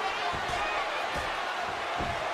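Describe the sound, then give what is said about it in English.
Heavy, booming thuds as wrestler Brock Lesnar throws Kane onto a ring mat with a judo throw, a few impacts in quick succession over a loud, steady roar of an arena crowd. “Brock with a judo throw.”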